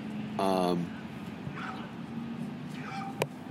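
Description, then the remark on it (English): A dog, Boomer, gives a short, strained harmonic whine or yelp, followed by a couple of fainter whimpers, sounding slightly tinny as it is played back in a video on a phone, over a low background hum. “That dog, though.”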